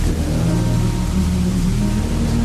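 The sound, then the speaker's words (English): Steady, dense rain hiss fills the background of a song beneath a low, droning hum of sustained tones, with no voices, keeping a constant level throughout. “I know, it's just noise with rain in the background.”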